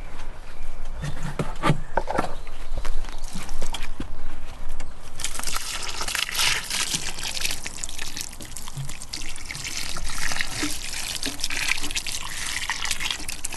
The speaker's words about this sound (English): Right, let's get this cord line watered and then call it a day.